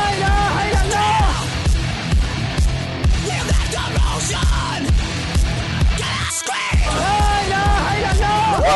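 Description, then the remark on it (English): A crowd of people screams and yells loudly and continuously, many voices overlapping in a dense roar, with one brief dip in the noise before the shouting surges again. “Scream!”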